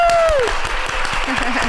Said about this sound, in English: Man, we do that in post. We gotta have nice. We got applause.